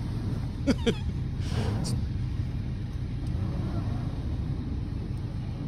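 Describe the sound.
A truck engine drones low and steadily throughout, straining under load in snow, with a brief rushing surge early on and some faint voice-like sounds near the start.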